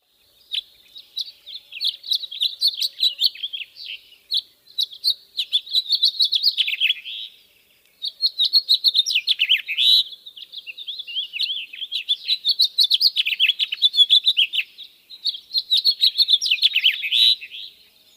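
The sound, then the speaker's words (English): A house finch sings long, rambling phrases of bright warbling notes, rising and falling quickly, repeated in several bursts with short pauses between them, clear with no talking. “Audubon.org describes their song as a series of warbling notes ending in a Z, canary-like, but without the musical trills and rolls”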